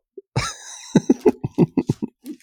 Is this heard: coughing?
yes